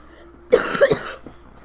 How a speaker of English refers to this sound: You had me coughing a lot.